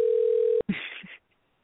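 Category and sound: signal or alarm, telephone dial tone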